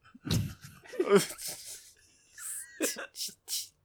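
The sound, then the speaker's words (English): A cat sneezes again and again in quick succession, a string of sharp, wet little bursts and sniffs spread across a few seconds, clear. “We got cat sneezes.”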